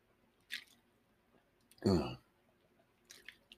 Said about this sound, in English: So we're continuing on in our study of Ephesians and Ephesians 5, and I'm going to take a quick drink.